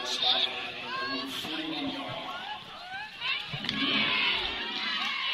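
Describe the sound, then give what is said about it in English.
A home stadium crowd at a Marple Newtown high school football game against Academy Park roars and cheers steadily, many young voices shouting over one another in a dense, continuous wash of noise that swells slightly near the end. “And the Tigers roar here above the crowd.”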